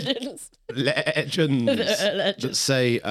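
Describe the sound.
A human voice imitates a goat's bleating as the screaming Goatman, loud, with quavering, wavering cries that run for a few seconds and break briefly after the first one.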